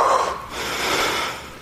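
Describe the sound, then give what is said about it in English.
A person imitates a man huffing and bracing himself, like the deep breaths taken before deep diving, forcing out two loud, breathy exhalations, noisy and rushing, with no words spoken. “I just picture him just huffing and just bracing himself.”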